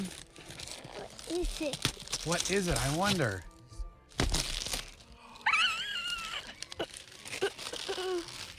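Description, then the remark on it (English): Gift wrapping paper being torn and crinkled in repeated bursts as a present, a Nintendo Switch, is unwrapped, mixed with excited voices talking and a child's high-pitched vocalizing. “Just rip it. You don't have to worry about it. We're not reusing the paper.”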